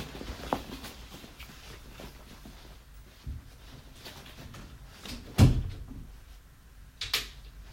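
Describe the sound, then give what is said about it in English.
A door is shut with one solid thump midway through, with softer knocks and shuffling before it and a lighter click shortly after. Nobody speaks; otherwise quiet. “Right, I'm going to close the door to keep her in 1 second.”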